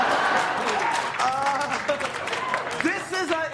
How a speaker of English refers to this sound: Cheering and clapping for that. President Trump is in the hospital with COVID. Chris Rock says, hilarious stuff. My heart goes out to COVID, he says. The fans are clapping and cheering.